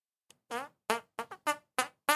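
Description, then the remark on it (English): A voice imitates fart noises with the mouth: a quick click followed by six short, buzzy raspberry bursts in an uneven rhythm, fairly loud, with no words spoken. “Right when Chad is getting mad deep about reality, … makes fart sounds.”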